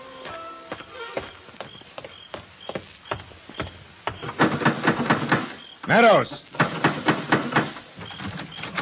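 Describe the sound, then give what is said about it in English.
Heavy fists pound on the door of a house in the south part of town again and again in an irregular rhythm, growing faster and more insistent, with a brief raised voice cutting in partway through. “Somebody open up or I'll shoot the lock off. Who is it? Open this door.”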